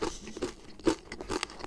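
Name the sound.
chewing a crunchy snack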